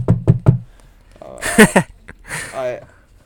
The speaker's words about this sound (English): Knock on wood.